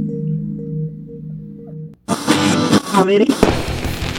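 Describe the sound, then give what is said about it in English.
A steady low humming tone gives way to a sudden loud burst of fireworks: crackling, booming explosions with a brief whistling rise, continuing noisily for about two seconds. “We've got all your gender reveal fireworks ready to ship.”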